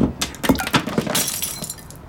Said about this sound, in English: My pre-nap glass of water knocked over and shattered as my knees slammed into the coffee table.